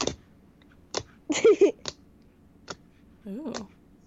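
Squishy clicking sounds from Very Berry Smoothie slime being squeezed in a big tub, about half a dozen sharp pops at uneven intervals, fairly loud, with a couple of short vocal murmurs mixed in.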